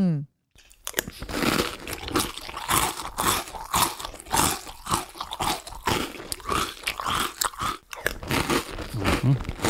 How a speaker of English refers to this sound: Chew that up. Eat that carrot, whatever it is. It sounds like it's something very crunchy.